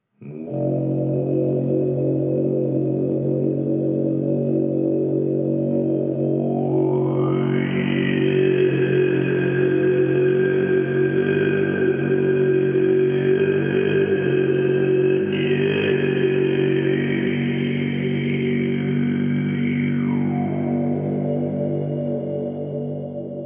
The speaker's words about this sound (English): I planned on asking him to demonstrate some Tibetan throat singing for us, and it was the first thing he did when seated in front of the mic.